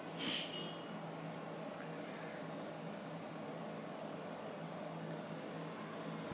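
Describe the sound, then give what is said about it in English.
A steady air conditioner hum, an even wash of noise with a low droning tone underneath, holding constant throughout with no voices and only a brief faint click near the start. “So for this meditation, which we'll do in silence, the first part, just keep the sound of the air conditioner or the sounds from the streets as awareness of the world around you.”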